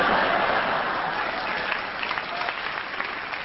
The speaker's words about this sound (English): Because the audience clapped and they enjoyed what you did, we'll give you a bonus point because you didn't get anything for those 56 seconds.